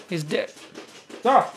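A dog digging on the floor whimpers and yips, two short, high, wavering cries about a second apart, with quieter rustling in between.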